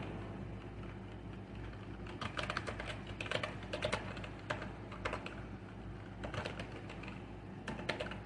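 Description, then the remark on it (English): Rapid keystrokes on a computer keyboard clatter in irregular bursts over a steady low hum, moderately loud, with brief pauses between flurries of typing, as someone types to bring up information. “Doing a little typing because I literally just saw this not even a day ago.”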